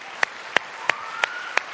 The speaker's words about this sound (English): Man, if we're going to clap, let's do it. Let's everybody clap.